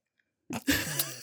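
After a brief silence, a loud swallowing sound: a big wet gulp of water with a throaty, slightly choked quality, heard alone with no talking.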